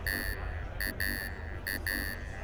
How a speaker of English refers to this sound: Your little pedometer tracker chip dealy. It's beeping.